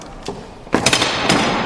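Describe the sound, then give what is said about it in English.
A heavy chain clanks and drags, starting with a single sharp clank, then breaking into a loud, continuous metallic rattle with repeated harsh clunks. No voices are heard. “Scrooge heard a clanking noise.”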